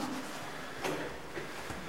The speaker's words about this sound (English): That drip makes it worse, listen. Yeah. It's getting louder.